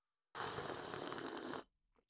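A single loud, drawn-out slurp of coffee lasting over a second, with a harsh, breathy rasp that cuts off abruptly, followed by a faint trailing sound.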